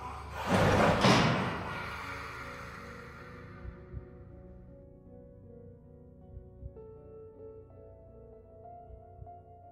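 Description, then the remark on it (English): A heavy, rusted metal door slams shut with a loud, booming crash, then a low reverberant hum and faint creaks linger as the echo fades. “But before he could reach us, a rusted door slams shut.”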